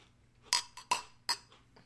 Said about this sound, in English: Shall we cheers? Cheers.